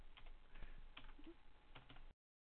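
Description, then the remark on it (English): Rapid clicking of computer keyboard keys in an irregular rhythm, fairly quiet, with brief pauses between bursts of keystrokes and no talking. “Dave AC, you hear me typing, go.”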